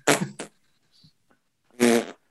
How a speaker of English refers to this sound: Can I ask, are the farts like giving a hint towards the type of surgery, or are they another layer separate to the type of surgery?